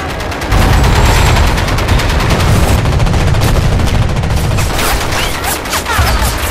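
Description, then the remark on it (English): Sustained, loud machine-gun fire from a cruiser streams overhead at 3,000 feet per second: a dense, rapid rattle of overlapping shots with a heavy low rumble underneath, running continuously for several seconds with faint whistling streaks toward the end. “The cruiser clocks him at the same time, and suddenly the airspace above his head is a screaming, whistling, 3,000 foot per second river of neon orange lead.”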